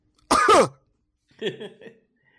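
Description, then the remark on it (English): A loud cough bursts out from someone who has a cold, followed a moment later by a softer, rougher throat-clearing cough. Two separate harsh bursts with a short silence between them, no talking. “Sorry for coughing in your guys' ears. I've been getting through a cold.”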